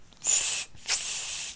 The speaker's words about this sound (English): Alex discovers propulsion as he grabs a spray can of foot powder and presses the nozzle while floating in the air